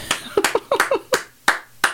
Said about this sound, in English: Clap, everybody. That's a real job.